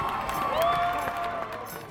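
A crowd cheers steadily as a police officer takes a knee with them, a dense wash of many voices with a few higher whoops rising and gliding above the roar, sustained and fairly loud for the whole two seconds.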